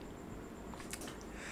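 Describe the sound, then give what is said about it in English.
A quiet sip of water: a couple of short, soft, wet slurping sounds in close succession over a low steady hiss, with no talking. “Let's build some tension and anticipation while I sip my water.”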